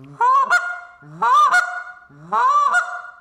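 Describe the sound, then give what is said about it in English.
Three loud Canada goose honks blown on a goose call, each a rising, breaking two-note cluck, evenly spaced about a second apart with no talking. “But if you really get the train note, if you master the train note in a goose call or a really strong moan, it's with the front of your mouth.”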